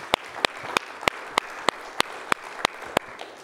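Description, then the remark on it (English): A church audience applauding, with a dense wash of clapping behind about a dozen sharp, evenly spaced claps that stand out in a steady rhythm. No one speaks. “Come on, let's give him a hand clap one more time, please.”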